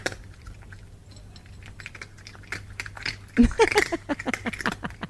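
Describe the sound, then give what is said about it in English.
A cat crunches dry kibble in quick, irregular crisp clicks and munches, quiet at first and then louder and denser in the second half, with a few faint squeaky chirps mixed in. “For only the biggest announcements do we reserve cat eating kibble.”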